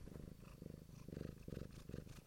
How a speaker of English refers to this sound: And together we run Hobeck Books, along with our cat, who is purring away nicely.